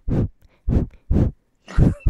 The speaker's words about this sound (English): That's me breathing out my nose. It's very small. It's not like a gust. I'm not really pushing back, you know?